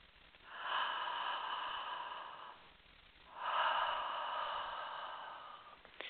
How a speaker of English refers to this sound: Please continue this gentle breathing throughout the meditation. Especially if you have any kind of an emotion come up, just go back to your breath and just breathe until you get to the other side of it.